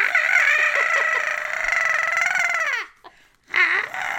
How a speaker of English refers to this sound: Anyway, that's my dairy phlegm.